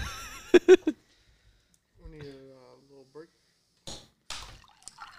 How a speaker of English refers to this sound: Keep pouring water right now.